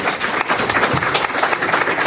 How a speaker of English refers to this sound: We have reached time, so please let's give a big round of applause to our panellists.